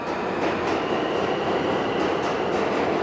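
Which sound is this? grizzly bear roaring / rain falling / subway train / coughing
subway train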